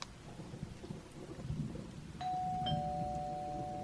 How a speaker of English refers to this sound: Saved by the bell? What bell?